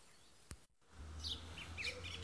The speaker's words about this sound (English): So I'm standing looking over a hill, feeling very grateful for those of you that are not standing over a hill. Hopefully you've had the sound of birds in the background, and that's a sheep and there's a bee nearby.